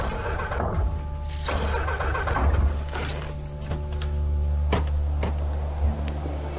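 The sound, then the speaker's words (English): A car engine, serviced only the day before, runs steadily with a strong low hum and droning harmonics, heard from inside a speeding car coming off the M25 at junction 16 while pursued by a traffic patrol, with a few sharp clicks and rattles over the top. “What do you know about engines? I know it was only serviced yesterday.”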